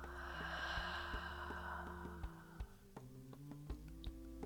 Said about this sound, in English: Inhale. And exhale. One more inhale. And exhale.